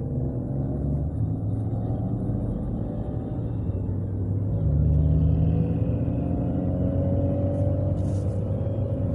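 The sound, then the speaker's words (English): A car engine rumbles steadily, then revs up partway through, its pitch climbing and the roar growing louder before holding at a higher drone until the end. No one speaks. “That his car? Yeah. Now, that's a dope car.”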